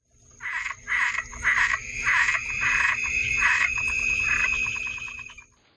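A frog croaks repeatedly in a fast, rhythmic series of raspy pulses, fairly loud, over a steady high-pitched insect-like drone, with no one speaking.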